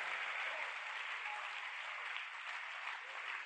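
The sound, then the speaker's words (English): An audience claps steadily throughout, a dense, even wash of many hands at moderate loudness with no voices rising above it. “You are not clapping.”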